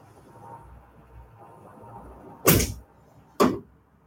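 Construction noise from a hotel under full-blown construction, at a training camp in Irvine: a low, steady rumble underneath, broken by two loud, sharp bangs about a second apart, each cutting off quickly. No one speaks.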